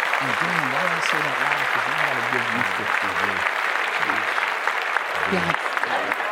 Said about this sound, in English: Clap that up.